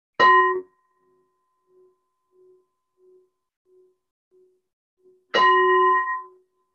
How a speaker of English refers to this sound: Well, we could sit here for a long time, but I'm just aware of the construction of linear time, and we've actually got to 11:30, so I better ring the bell.